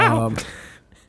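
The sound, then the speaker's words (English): A dog named Zeus gives one short, whiny whimper that slides downward in pitch, followed by a quick breathy huff, then the sound trails off into near silence. “He wants lovin's.”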